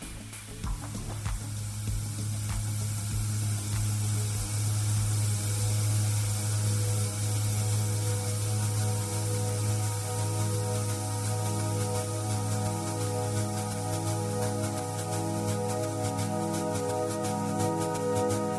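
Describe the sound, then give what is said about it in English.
Water flows in a steady, continuous rush, a broad hiss that holds even throughout, layered over a low sustained hum with faint tonal notes. No one speaks. “They cover an abundance of water sounds and turn imperfect water sounds into a perfect music album.”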